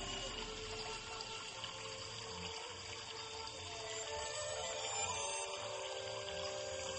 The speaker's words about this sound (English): As you look around the garden, the sounds of the water coming down from a waterfall into a creek. Slow, calming.